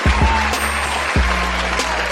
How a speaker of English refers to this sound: Oh, fans, every time I hear your warm applause, it always lets me know I'm doing something right